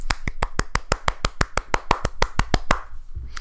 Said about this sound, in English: And I, for one, will stand up and applaud.